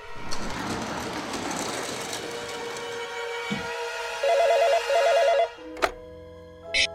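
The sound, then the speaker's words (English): A telephone rings in two short electronic trilling bursts, fairly loud, following a stretch of dense, noisy clatter, with a sharp click or two afterward. “The phone's ringing.”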